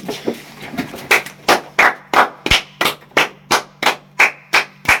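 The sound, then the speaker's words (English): Brisk hand clapping, roughly a dozen sharp, evenly spaced claps in a steady rhythm, fairly loud, with a low hum underneath and no talking, given as a quick standing ovation for San Pellegrino. “Should we just have a quick standing ovation for San Pellegrino?”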